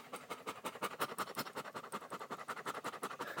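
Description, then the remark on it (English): A dog named Kona pants rapidly and steadily after an evening run in hot weather in Texas, quick breathy huffs repeating about five or six times per second, fairly faint and unbroken, with no talking. “Had a really nice evening run, and what was super cool was, you can hear Kona... panting here.”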